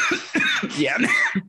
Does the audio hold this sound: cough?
yes